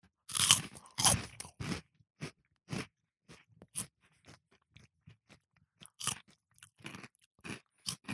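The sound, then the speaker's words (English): Buffalo spicy chicken crisp snacks being crunched and chewed: a few loud, sharp bites at first, then a long run of quieter, irregular crunches, with no talking. “Buffalo spicy chickens. Are you ready?”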